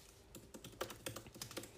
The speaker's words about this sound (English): You can literally hear me typing.